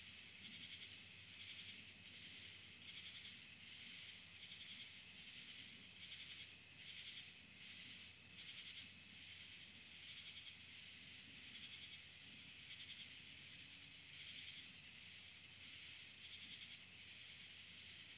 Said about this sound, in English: But to the back, trees are all you see. And they're beautiful. And the crickets are nearby.